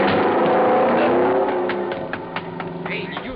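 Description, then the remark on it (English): A car engine roars, then a scattered burst of sharp cracks and clattering impacts, like wood splintering as the car is driven right through the door of a garage. “He drove right through the door of his garage.”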